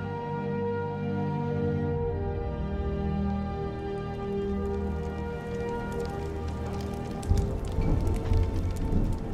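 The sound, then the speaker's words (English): Heavy rain pours steadily onto the thatched roof and tin chimney of the Sleeping Giant Inn in a Skyrim audio adventure, a constant hissing roar. After about seven seconds it grows louder, with denser, sharper patter, over a low sustained hum. “All was drowned out by the constant roar of the deluge on the thatched roof and the tin chimney of the Sleeping Giant Inn.”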